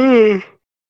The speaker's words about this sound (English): You know what? It's not a podcast if I don't yawn.